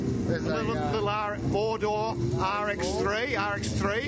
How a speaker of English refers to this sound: That's a noisy little peripheral port 13B rotary Grip C, you know, car that ran around the circa 82, 83, 84 time frame.